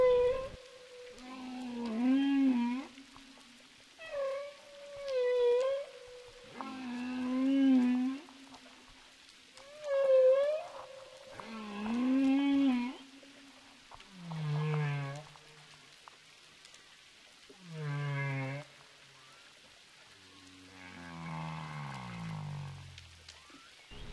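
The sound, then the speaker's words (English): A series of underwater calls from three humpback whales swimming past divers in crystal clear water: long tonal moans and rising and falling whoops repeating one after another, some with a pulsed, buzzing texture, fairly loud, with no talking. “And what could be a more awesome sight than being surrounded by three humpback whales in crystal clear water?”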